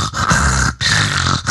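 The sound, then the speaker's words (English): A person imitates the loud, raspy, strained breathing of an older dog with laryngeal paralysis, as seen in Labrador and Golden retrievers: two long harsh wheezing breaths separated by a brief pause, with no other talk. “they can get that noisy breathing from what we call laryngeal paralysis”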